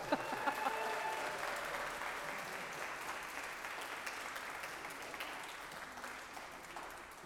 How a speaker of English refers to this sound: Blessings. You can applaud.